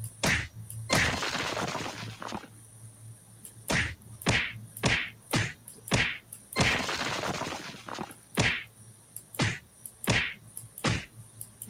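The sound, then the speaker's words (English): A rapid series of video game punching impacts as the player character punches a wall, about a dozen sharp, loud thwacks in an uneven rhythm, a couple trailing off in a brief noisy whoosh, with no talking. “I'm punching wall.”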